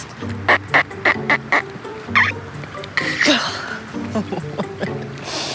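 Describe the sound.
A woman standing at the edge of a lake imitates duck quacks to call ducks on a cold, windy day: a quick run of five nasal quacks, then a few drawn-out, wavering calls and scattered shorter ones, fairly loud, with a burst of wind at the end.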